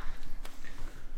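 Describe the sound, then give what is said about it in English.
A single sharp clap by several people together on a count of three, cutting through a low, steady background rumble with no one speaking. “Clap on three. Clap on three. One, two, three.”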